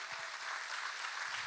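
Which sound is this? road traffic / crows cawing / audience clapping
audience clapping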